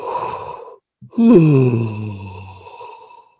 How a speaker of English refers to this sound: Relax your jaw so your mouth drops open. Inhale and just let out a nice, almost a yawn.